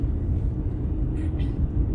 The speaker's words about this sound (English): This fucking truck.